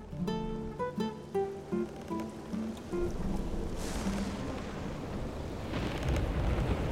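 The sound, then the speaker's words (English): A few ringing melodic notes give way to a steady hiss of heavy storm rain at sea, coming from the south, with deep rumbles and sharp thunder cracks near the middle and again toward the end. “From the south it came, swells as high as the ship. With thunder so vicious, it cracks hard like a whip.”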